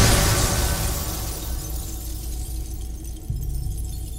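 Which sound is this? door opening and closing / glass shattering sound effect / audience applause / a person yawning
glass shattering sound effect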